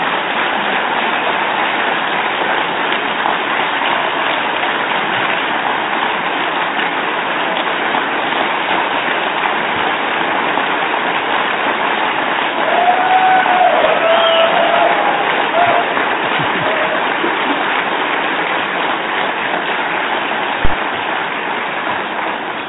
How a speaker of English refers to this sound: And I wanted to play all of that, including the nearly 25 seconds of standing ovation and applause Governor Abbott received.